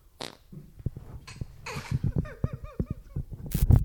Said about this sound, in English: What's that? Oh, nothing. What have you done? Just a fart.